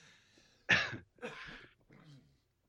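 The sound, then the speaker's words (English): A harsh cough bursts out, followed by two weaker, raspy throat-clearing coughs in quick succession, with no talking around them. “Oh, there's that cough, man.”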